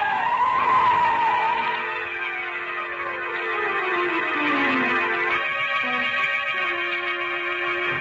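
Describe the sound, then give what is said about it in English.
A car skids hard on a street, almost running a person down, with a long, loud tire squeal, the pitch sliding downward as it scrapes along, then settling into a steady screech near the end. “I got here just as that car almost ran you down.”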